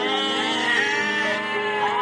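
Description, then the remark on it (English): A sheep bleats in one long, wavering cry that fills the whole moment, loud, with no other sounds around it. “He had a large flock of sheep.”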